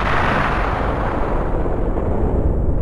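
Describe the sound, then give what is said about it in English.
A loud explosion rumbles continuously for about three seconds, its crackling upper hiss fading early while a deep, heavy roar carries on alone with no voices. “In the beginning, there was, an explosion.”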